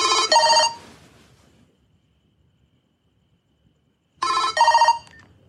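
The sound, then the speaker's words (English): A telephone rings twice at 5 a.m., short bursts with each trill bright and insistent, separated by about three seconds of near silence. The rings are fairly loud, with no voices. “And then you see her in her bed and she's sleeping and she's getting a phone call at 5 a.m.”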